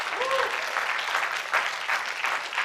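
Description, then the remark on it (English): An audience claps for the Lord in sustained, dense applause that fills the room steadily, with a faint cheer near the start and no clear speech over it. “Yeah, go on, give the Lord a clap.”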